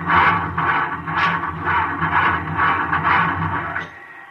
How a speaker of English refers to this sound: Right. What's wrong? I can't start the engine.